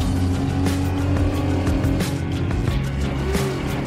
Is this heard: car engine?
yes